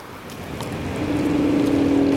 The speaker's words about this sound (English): I am on an electric scooter on the Mall, heading towards Buckingham Palace, dodging traffic,